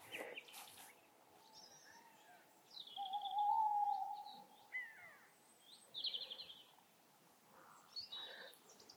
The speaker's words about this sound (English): I'm sure you know tawny owls. The tuwhit tuwhoo is a call and response. It's a contact call. So one's going kiwik and the other goes woo.